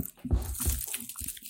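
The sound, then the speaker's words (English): A loud crunch as teeth bite into the crisp crust of a pie containing lentils and kidney beans, followed by a few more brittle crackling bites and chewing sounds, with no talking. “Okay. I'm very crunchy. It looks like a football pie.”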